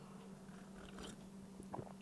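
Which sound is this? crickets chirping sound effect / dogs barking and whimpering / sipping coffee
sipping coffee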